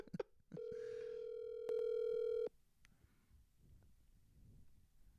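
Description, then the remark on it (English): A single steady electronic telephone ringback tone hums for about two seconds after a few clicks, then cuts off into faint background noise while the line keeps ringing unanswered. “The best format is the dead air of a ringtone.”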